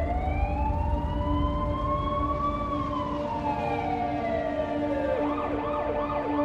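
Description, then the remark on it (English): Police car and ambulance sirens wail steadily, going up the West Side Highway towards the World Trade Center, a rising-and-falling tone joined by a faster warbling siren near the end, over a constant rumble of city traffic, heard from a 24th-floor terrace. No one speaks. “So watching the police cars and the ambulances with their sirens going off, going up the West Side Highway towards the World Trade Center, people were screaming collectively.”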